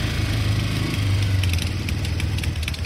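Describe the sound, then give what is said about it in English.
A motorcycle engine revs as the rider puts up the kickstand at night, a loud, steady low rumble that swells briefly before settling back, running the whole time with no voices. “I put up the kickstand, rev the engine, cannot resist the final word.”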